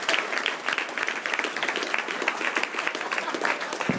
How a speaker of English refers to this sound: Very nice. Let's have a round of applause for him.